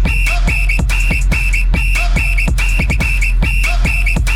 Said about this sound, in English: Blow my whistle, bitch.